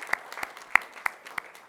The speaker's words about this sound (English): So let's give her a round of applause and congratulate her. Good job.